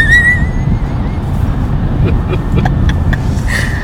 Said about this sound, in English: Oh, no. A truck.